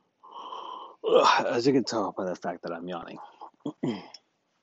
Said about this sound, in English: I usually record in the middle of the night when I'm trying to get to sleep and get myself to sleep. As you can tell by the fact that I'm yawning.